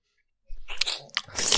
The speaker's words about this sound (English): What are you doing at the moment? Eating a truffle. Next to a microphone, which is highly sensitive.